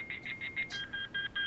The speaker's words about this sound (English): It sounds like an alarm going. There's no good way to play that game quietly.